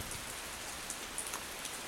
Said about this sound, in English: At a shelter in Fundy. In Herring Cove, I guess. Yep. And what's it doing outside? Raining.